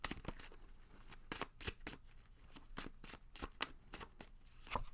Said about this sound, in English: All right, my friends, let's pull some tarot. Let's see what's going on this week.